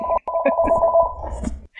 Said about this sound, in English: Is that me? I hear a ringing. Oh, that is me. Sorry.